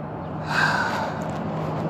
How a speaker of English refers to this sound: And if you can hear any background noise, it's because I'm waiting for my bus as I get ready to go to work.